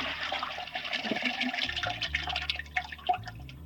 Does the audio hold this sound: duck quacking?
no